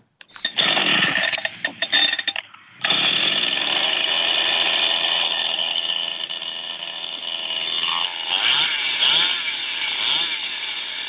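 A chainsaw, for a tree, roars to life with a few sharp revs and brief cutoffs, then settles into a steady, loud, high-pitched buzzing drone that wavers slightly near the end.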